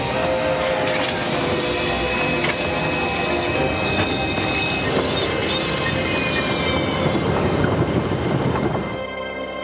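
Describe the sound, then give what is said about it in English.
A train rumbles loudly, its wheels letting out a continuous high-pitched metallic squeal over heavy clattering, steady for about nine seconds before easing off at the end. “Stop the train! Stop it!”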